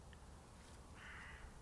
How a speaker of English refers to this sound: And behind me, you might be able to hear the crows. They may be a bit distant. Can you hear?